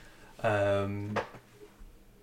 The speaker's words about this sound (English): Hope we're all doing well with my squeaky chair.